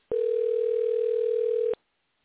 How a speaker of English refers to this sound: Did we get Chris on the phone? It's ringing now.